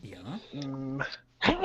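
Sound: sneeze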